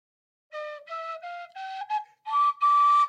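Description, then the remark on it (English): A cheap toy whistle, not all of its holes drilled all the way through, plays a rising scale of about seven short, wobbly notes, clear, each tone breathy and slightly off-pitch, with brief gaps between them and no talking. “If I try to play a scale, this is what it sounds like.”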